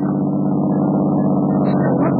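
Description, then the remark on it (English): A car with a woman in the back seat rumbles steadily at a fairly loud, even level as it drives by, a low continuous hum with faint higher whines near the end and no voices. “That car going by.”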